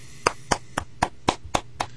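Seven sharp hand claps in a steady, even rhythm, each a crisp snap with nothing in between and no voices.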